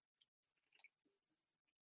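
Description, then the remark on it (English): A quick sip from a drink: soft wet slurping and a swallow, with small mouth clicks over about two seconds, and no talking. “Got to take a sip before I comment on that”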